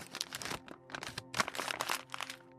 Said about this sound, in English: The next day, as I came home from school, I found something on our front porch. It was a brown paper bag, crumpled down from the top, not folded.